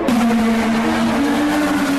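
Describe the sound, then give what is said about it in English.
A loud, high-pitched Indy race car engine whines steadily at the Honda Grand Prix of St. Petersburg, its pitch holding nearly level with a slight rise, over a wash of track noise and no talking. “Well, we're here with our new Indy cars”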